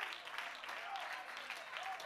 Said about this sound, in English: I know some of you are barely clapping right now because this is basic.